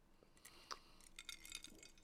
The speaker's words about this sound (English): Okay, well, I don't know if I just have like a really like sensitive glass or if just the ice cubes in that glass are being ridiculous, but whatever.